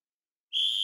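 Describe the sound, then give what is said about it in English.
A model train whistle blows a single shrill, steady note that starts abruptly after a moment of silence and holds loud until the end, as the model trains start to travel over the tracks. “Either way, with a whistle and a whir, they came to life and began to travel over the tracks.”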